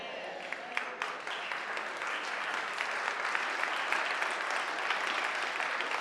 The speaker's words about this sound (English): Which means, let's see if y'all still clapping after this,